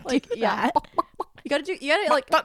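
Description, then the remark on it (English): A person vocally imitates a chicken, producing a run of bouncy, throaty clucks and squawks with rising pitch, fairly loud, with no other talk alongside. “You are known as …?”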